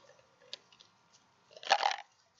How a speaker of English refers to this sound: As he downs his drink. Yeah, that stuff's good.